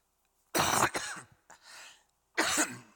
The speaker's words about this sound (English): sorry, that scared you a little bit, didn't it? It wasn't me coughing. You're not near me, so that's okay.